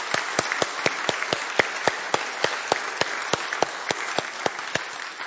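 A group claps steadily for about five seconds, with a sharp, evenly timed clap standing out above the dense wash of applause. No one speaks.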